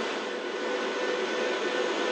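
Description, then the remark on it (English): A loud, steady jet engine roar of a Chinese fighter jet intercepting a Canadian Armed Forces Aurora patrol plane, flying within a few meters of its wing, a dense unbroken rush of aircraft noise with no voices and no change in intensity. “We're watching closely here as this Chinese fighter jet intercepting the Canadian Armed Forces Aurora plane that we're on board.”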